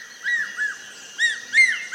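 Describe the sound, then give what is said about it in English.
An ornate hawk-eagle, more than 2 feet tall, perched at a forest edge with a spider monkey in its talons, gives a rhythmic cry: four clear, high whistled notes, each rising then falling, in two pairs with a short pause between. No one speaks. “An ornate hawk eagle, perched at the forest edge with a spider monkey in its talons.”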